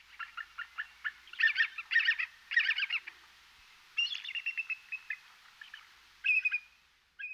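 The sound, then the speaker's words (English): A bald eagle calls with thin, high-pitched chittering: quick runs of short piping notes that break into several clustered bursts over several seconds, clear with no other sounds. “And here is our avian national emblem, the bald eagle.”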